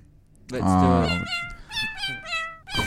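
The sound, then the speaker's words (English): A cat meows loudly, one long drawn-out meow followed by a quick string of shorter, higher meows, played as a sound effect, with no talking over it. “Can we get that sound effect?”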